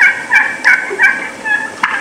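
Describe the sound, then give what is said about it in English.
A wild turkey in full strut gobbles in a quick series of loud, warbling bursts, about five in two seconds, heard alone with no talking. “When the bird's in full strut like that, they can be tough to shoot.”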